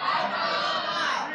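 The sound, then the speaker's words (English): An audience shouts all at once on a count of three, many overlapping voices yelling out their favorite Christmas movies in a loud, sustained burst of jumbled chatter that holds steady for over a second. “I was wondering who was gonna be the one that like waits till everybody screams and then they scream theirs.”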